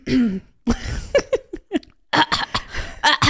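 Someone clears their throat, then breaks into a string of short, harsh coughs in uneven bursts, loud, with no talking.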